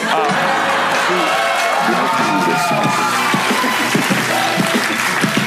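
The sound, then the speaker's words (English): A crowd applauds steadily for several seconds, a dense wash of clapping mixed with cheering and excited voices, fairly loud and continuous throughout. “Sorry, I know you guys wanted to clap, but everything I'm going to say is going to be amazing.”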